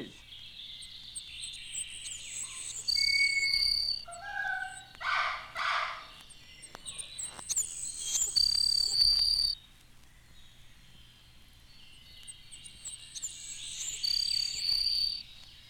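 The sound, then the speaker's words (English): A savannah sparrow sings high, thin buzzy songs, each with two short trills at different pitches, repeated a few times against a faint insect hum in an open field. “These songs of a savannah sparrow include two short trills on different pitches.”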